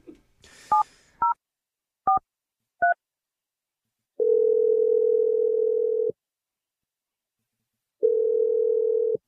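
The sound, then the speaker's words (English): A few short telephone keypad beeps as a number is dialed to call a girlfriend, then two long, steady ringing tones separated by a pause, clear with no voices. “We're going to dial your girlfriend and let you make your Awkward Tuesday phone call.”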